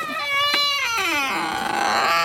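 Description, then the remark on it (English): A garden gate creaks open in one long, squealing groan, its pitch wavering upward and then sagging slowly over a couple of seconds, with no voices. “Now that's the sort of creak you want from a garden gate, isn't perfect.”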